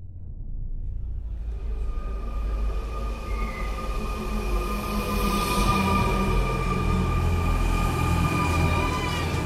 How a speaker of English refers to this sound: It began as a regular afternoon commute on the Taipei subway. Shortly before rush hour on May 21st, 2014, passengers on the city's blue metro line went about their day, sneaking in a quick nap or playing with their mobile phones.